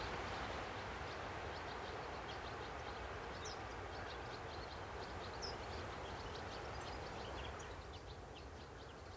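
Garden birdsong with blue tit, siskin and sparrow calls: quick, high-pitched chirps and twitters repeating throughout, set over a constant, loud low rumble and hiss.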